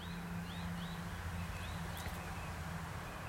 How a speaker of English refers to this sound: Listen to those birds. I love the Australian bird song.